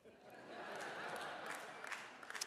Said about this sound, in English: I knew I'd get a 50% applause on that one. I knew I was about halfway there.